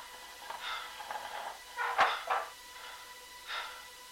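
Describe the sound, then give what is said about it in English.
A chair scrapes and shuffles across the floor, then a sharp knock and a few creaks and bumps as someone climbs onto it, fairly quiet, with no talking. “I'm gonna pull a chair over and climb up for a better view.”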